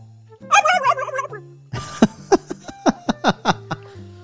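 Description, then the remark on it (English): A turkey gobbles loudly, a fast warbling rattle followed by a string of sharp, punchy clucks in quick succession, with no voices alongside. “Get that turkey out of here. Who are you calling a turkey?”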